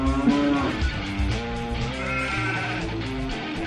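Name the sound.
cow mooing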